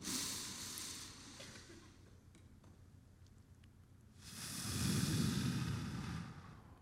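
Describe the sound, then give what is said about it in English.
Many adults and children breathe together in unison in a church during a bubble breathing exercise: a soft collective exhale at first, a quieter pause, then a louder, longer group breath that swells and fades. Otherwise quiet, with no talking. “Those bubble breathing techniques can help regain focus.”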